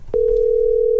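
An outgoing FaceTime audio call's ringing tone on a phone: one steady, unbroken electronic hum at a single mid-low pitch, loud, starting just after a brief click and continuing to the end with no voices.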